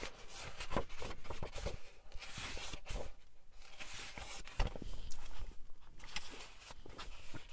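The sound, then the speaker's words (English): Pages being turned and shuffled, with a steady run of crisp, papery rustles and soft flaps lasting several seconds, moderately loud and uneven in rhythm, with no voices. “Forgive the sound of pages turning.”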